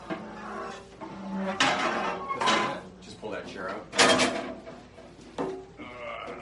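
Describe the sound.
A chair is dragged and shifted across a hard floor, pulled next to another chair, in several short, loud scraping bursts with knocks between them, while people talk faintly in the background.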